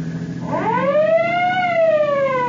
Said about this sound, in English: Step on it, Peter. Use your siren.